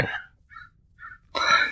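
A crow caws: a harsh call at the start, two fainter short caws in the quiet middle, then a loud, raspy caw that runs to the end.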